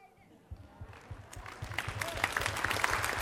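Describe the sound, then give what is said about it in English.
An audience claps their hands, starting sparse and quickly building into a dense, rhythmic wave of clapping that grows steadily louder, with voices mixed in underneath. “I'm going to clap them. I said I'm going to clap them.”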